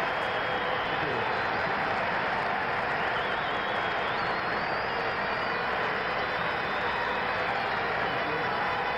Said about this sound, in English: So that gets probably the biggest applause of the speech.